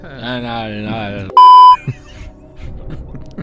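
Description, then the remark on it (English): A single loud electronic buzzer beep, like a game show buzzer, lasting about half a second, as a game buzzer is tested, sounding abruptly between stretches of people talking. “We have to test our buzzers. Curtis, what's your buzzer?”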